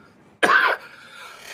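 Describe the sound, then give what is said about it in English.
A single sharp cough bursts out abruptly, followed by a softer raspy exhale trailing off, with no talking. “Sorry, I've been out in the garden all day and I think I'm coughing up part of the garden.”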